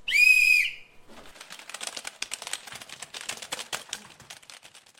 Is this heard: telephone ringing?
no